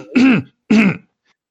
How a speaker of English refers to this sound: Okay, did I forget somebody, or are you just clearing your throat?